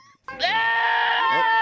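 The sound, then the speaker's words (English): A single drawn-out goat bleat, loud, with a wavering nasal tone that holds for over a second before cutting off. “There's the GOAT. It's a very delayed GOAT.”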